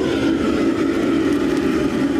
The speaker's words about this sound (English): Yeah, like when it comes to cooking in a Cantonese kitchen, this reaction is a bit different because the food is cooked in a wok under a short period of time on a stove that looks and sounds like a rocket engine. It sounds just like this.